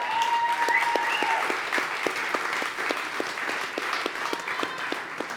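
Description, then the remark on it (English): A crowd applauds steadily for several seconds, a dense wash of many hands clapping, with a faint regular beat of rhythmic claps running through it and a brief thin whistle early on. “And I don't say it because I want applause, and I don't say it because I want thank yous, and I say it because it's the most important thing on the planet, because none of us in this room would be able to do what we do if it wasn't for them.”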